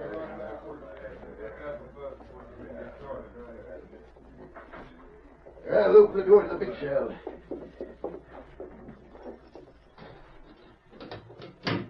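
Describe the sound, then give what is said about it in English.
A heavy jail cell door grinds and clanks open partway through, after midnight, to let prisoners inside, louder than the low voices talking before and after it. “Open the door to the big shell.”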